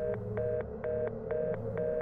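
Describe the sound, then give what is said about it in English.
A dead telephone line tone: a steady electronic hum broken by quick, regular clicking pulses, about four per second, moderately loud and continuous with no voices. “The phone went dead.”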